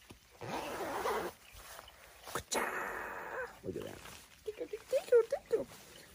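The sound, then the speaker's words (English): The large armpit zipper (pit zip) of a jacket meant for running is pulled open in two long, raspy strokes, followed by brief murmured voice sounds. “I wanted pit zips because I intend to run in this, which I have been doing.”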